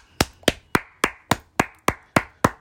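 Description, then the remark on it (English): Someone claps their hands about nine times at a steady, even pace as a round of applause for Luke Fickell, each clap sharp with a quick decay, and no voices or other sounds in between. “Round of applause for Luke Fickell.”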